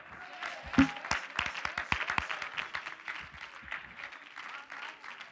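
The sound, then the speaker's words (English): A church audience claps their hands in praise to God, a dense burst of many overlapping claps that rises quickly and carries on steadily as warm applause. “Clap your hands and give God praise.”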